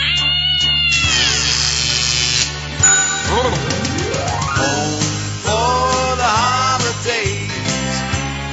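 A cat meows and caterwauls loudly, with long drawn-out yowls that rise and fall in pitch for several seconds over a low, steady background hum.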